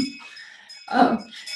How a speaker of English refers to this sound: you're going to hear a bell. So this is telling people it's time for service. So ignore that bell.